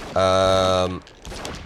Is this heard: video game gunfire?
yes